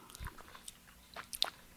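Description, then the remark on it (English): A quiet sip of a frothy mezcal drink served on the rocks, with a few soft clicks and a brief bright clink of ice cubes near the end, no voices. “Let's sip this thing.”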